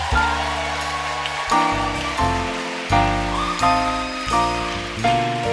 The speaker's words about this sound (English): Clap for them.